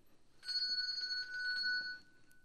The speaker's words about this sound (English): I guess that's pretty obvious. It is. She shook the bell.